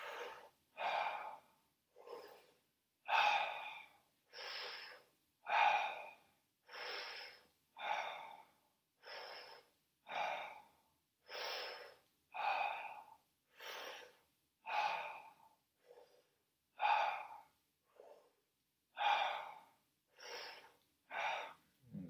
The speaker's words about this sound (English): Afterwards, you always come back to the connected breathing, the circular breathing.